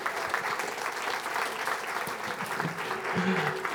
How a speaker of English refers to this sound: Would you stand to your feet? Would you give the man of God a round of applause as he comes